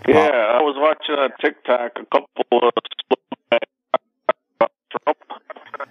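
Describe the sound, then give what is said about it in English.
A male caller's voice over a narrowband phone line with a bad connection starts clearly, then breaks up into short clipped fragments separated by dropouts of silence, the call cutting in and out repeatedly. “You're breaking up. You're a little choppy there, my friend.”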